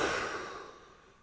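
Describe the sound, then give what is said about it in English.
A single long, breathy exhale like a deep sigh as someone takes deep breaths in and out, soft and gradually fading out over about a second, with no talking. “Take a few deep breaths. Breathing in. Breathing out.”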